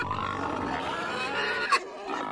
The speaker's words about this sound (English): Keep in mind that one common sanitary disposal practice widely in use into the 1950s entailed spreading whatever trash had come in that day across a landfill and then letting pigs loose on it to feed until the next morning.